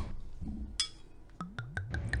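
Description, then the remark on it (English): Wine glugs out of a bottle into a glass: a brief splash, then a quick run of about five rhythmic, hollow gulps with ringing tones, heard alone without talk. “So Kate, let's talk wine. What are we sipping on today?”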